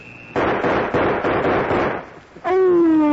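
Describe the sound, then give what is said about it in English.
A quick volley of loud, sharp pistol shots fired in a duel, about five or six bangs in a rough rhythm over a noisy wash, followed by a steady high pitched tone. “We shot that Willa”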